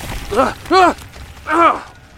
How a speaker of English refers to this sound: D6042 runs to the front door of the house, unlocks it, and attempts to pull it open. The door appears to be stuck in place. D6042 pulls on the handle, leaning away from the door. Suddenly the door opens, the camera hitting the ground as D6042 falls.